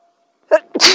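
A single sharp sneeze, with a quick breathy intake followed by a loud, explosive burst, isolated against silence.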